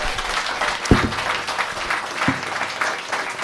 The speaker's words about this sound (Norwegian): Lykke til med valgkampen I spurten. Stor applaus til Arne.